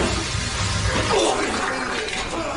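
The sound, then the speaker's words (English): A wet, sputtering fart played back from a video: a gurgly, splattering burst with low rumble that runs steadily for about two and a half seconds, with no talking over it. “It's a real watery one.”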